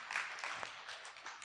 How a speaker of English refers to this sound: Yeah, you can clap on that one. That was good.